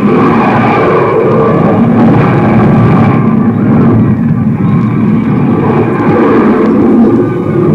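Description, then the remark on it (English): A rocket ship from Mars comes in to land over a field with a loud, steady engine roar, a dense rumble layered with droning whine tones that barely changes in strength for several seconds. “They're coming in! The landing rocket ship first!”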